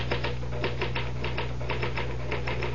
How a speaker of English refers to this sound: Well, the truth is that the typewriter, or rather, Mr. Gahn, does all the brain work. Watch.